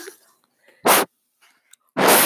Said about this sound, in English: That was our breathing.